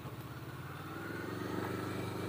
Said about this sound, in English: So I have no GPS running, so car coming.